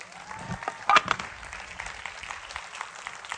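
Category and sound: crowd, audience applause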